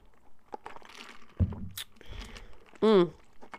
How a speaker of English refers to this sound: Anyways, let me sip on my grape juice.